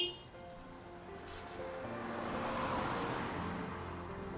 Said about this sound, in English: Who's that driving up to the house?